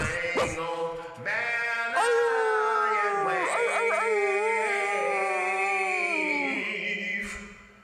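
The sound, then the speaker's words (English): A dog vocalizes loudly, a few short yelps giving way to one long, wavering, howl-like cry that holds for several seconds before fading. “It's gonna make my dog bark!”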